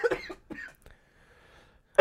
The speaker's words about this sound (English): I'm just trying to figure out why … just all of a sudden started coughing